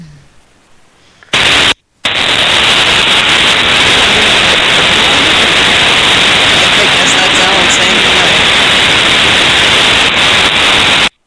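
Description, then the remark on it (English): A brief quiet moment, then a sudden blast of loud, harsh static from a caller's line that hisses continuously and evenly for about nine seconds before cutting off abruptly. “if you're listening, you just like went all static.”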